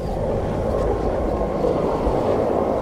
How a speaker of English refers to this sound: We gear up fast, and two helicopters arrive from town. They circle down to pick us up.